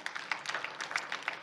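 A church audience gives the Lord a clap offering, clapping together in a steady, dense burst of applause, many hands striking at once with a bright, crackling texture that holds fairly even throughout.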